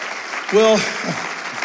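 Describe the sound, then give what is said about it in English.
An audience claps for their pastors' family in a dense, continuous wash of applause, with one voice briefly whooping out over the clapping near the start. “Would you please clap your hands and tell this family how much you love them?”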